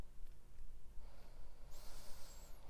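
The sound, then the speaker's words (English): A slow, deep breath drawn in during a guided relaxation exercise, quiet, its airy hiss building and growing brighter toward the end. No one speaks. “Go ahead and take a deep breath in.”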